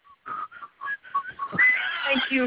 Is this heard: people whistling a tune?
yes